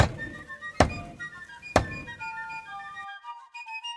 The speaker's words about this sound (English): When all of a sudden we hear three loud knocks.